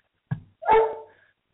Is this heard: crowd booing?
no